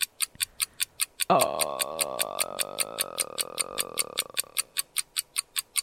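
Steady, rapid game show countdown clock ticking during a Lord of the Rings themed quiz, with 7 seconds on the clock, runs the whole way through, loud, with a long wavering tone swelling over the ticks through the middle before fading back to ticking alone.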